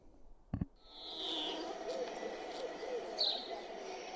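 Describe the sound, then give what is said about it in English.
A single long, low cow moo played from YouTube, drawn out for about three seconds at steady moderate loudness, opens with a brief sharp knock, and a faint thin whistling tone rides above it. “This is the cow sound.”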